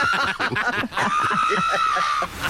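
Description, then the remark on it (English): A pug screams in a strikingly human-like way while getting its nails clipped: choppy, stuttering yelps give way to one long, loud, steady high-pitched wail that holds for over a second before cutting off. “And the pug screams like a human as he's getting his nails clipped.”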